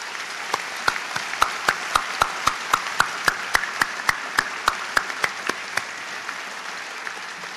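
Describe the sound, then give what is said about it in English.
Audience applause for the platform party at a university graduation ceremony, with a soft wash of many hands beneath a run of sharp, evenly spaced claps that keep a steady beat for several seconds before tapering off. No one speaks. “Let's have a round of applause for them as well.”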